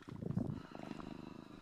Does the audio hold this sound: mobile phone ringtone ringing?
no